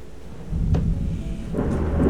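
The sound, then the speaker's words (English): A South Florida thunderstorm in hurricane season, on August 2nd, rumbles low and heavy beneath steady rainfall, with a deep roll of thunder swelling midway and a sharp crackle of rain and thunder near the end; no voices. “Another one of those nights. South Florida rain coming this for the hurricane season too.”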